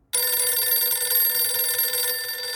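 A telephone bell rings loudly and continuously at a home, a bright metallic trill that starts abruptly and sustains for a couple of seconds with no voices, a prank phone call.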